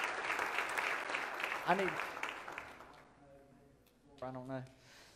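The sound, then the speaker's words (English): A large church audience claps together in a dense, steady wash of applause honoring those who served, fading out after a few seconds, followed by a man's voice speaking briefly. “Let's give them all a hand clap this morning.”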